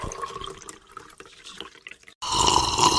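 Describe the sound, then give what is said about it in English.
Water trickles and drips unevenly for a couple of seconds, then a loud, steady rush of shower water suddenly bursts on and keeps running, with no one speaking. “I'll be right out after a shower.”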